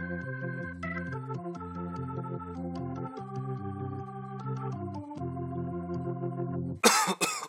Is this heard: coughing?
yes